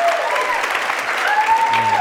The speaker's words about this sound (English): He's getting like half applause from the crowd.